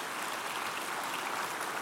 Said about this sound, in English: Praise God for them again, men, if you have a hand to clap.